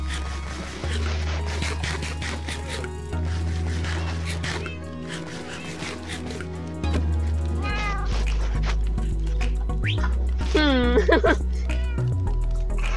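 A cat meows a few times, with one long, loud, wavering meow near the end, over a steady low droning background.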